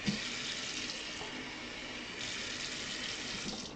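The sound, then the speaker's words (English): Steady rush of tap water pouring from a faucet into a glass, continuous, with a slight shift in tone partway through as the stream fills the glass. “I definitely just did water.”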